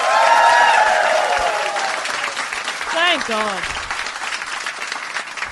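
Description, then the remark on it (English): Dense audience applause at a live show, from those who have heard the show before, runs throughout, loud at first with whoops and cheers, then a voice speaks briefly over the clapping as it gradually thins out. “Now, there's always a few people that have never heard the show, but first of all, we start with, give me a round of applause if you have heard Do Go On before.”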